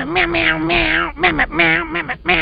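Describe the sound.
Someone imitates a cat with their voice, giving several drawn-out, nasal meows in quick succession, loud, with nothing else in the background.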